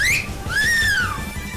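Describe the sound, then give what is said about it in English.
A loud wolf whistle: a quick rising note followed by a longer swooping glide that climbs and then falls away, over a low rumbling background. “Chicks whistling at his biscuit”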